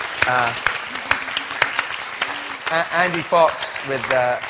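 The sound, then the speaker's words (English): An audience claps in a sustained, dense burst of applause for two people seated at the very top, with a voice talking over it and a few cheers rising from the crowd. “Actually, those two characters, let's give them a round of applause, hiding up there.”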